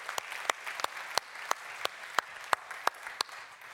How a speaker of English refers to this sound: These guys did a great job yesterday with our Alpha group. They had so much fun. The stuff that's going on in the Alpha group, God bless you guys. Absolutely. Give them a little round of applause.